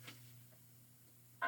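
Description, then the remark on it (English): A quiet, steady phone-line hum with a faint click early on, then a loud electronic tone abruptly starts at the very end, on a support call placed on hold while the agent checks and transfers it. “Can I place the call on hold while checking on this?”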